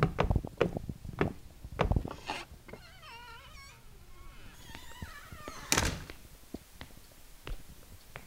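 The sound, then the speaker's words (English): A front door creaks with wavering squeals, then shuts with a solid thud, surrounded by scattered footsteps and knocks. No one speaks. “And I think you should head inside that front door, Well, if you insist.”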